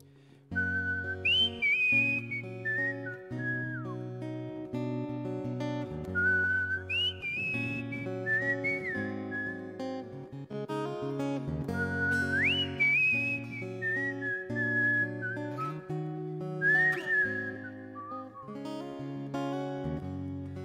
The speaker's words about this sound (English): And I don't want to be irreverent, but the way this song was given to me, it has this whistle in it. And if you guys don't mind, I just want to give it to you how the Lord and my grandmother gave it to me, if that's okay.